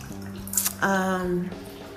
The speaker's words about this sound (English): So I guess I can end it like this. You turn the water off.